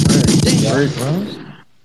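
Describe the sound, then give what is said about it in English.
A voice imitates a rapid burst of gunfire with loud, sputtering mouth sounds, then trails off into a brief voiced tail before abruptly cutting to silence. “Gunshots for the team.”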